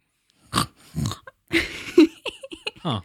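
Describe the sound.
A person imitates a pig, making a series of nasal snorts and snuffling grunts in short bursts, with a wet, throaty oink-like sound in the middle.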